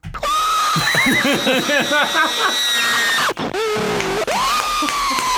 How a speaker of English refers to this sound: I'll never get tired of the goddamn scream. That is so obnoxious. Some of them are up the there. Wilhelm scream. Times four. Yeah. That's a chorus.